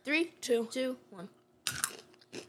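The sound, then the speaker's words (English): A voice sounds briefly, then a few loud crunching bites of a hard-coated, double-crunch, barbecue-flavored peanut snack break out in sharp bursts, with short pauses of chewing between them. “Holy cow, that's crunchy.”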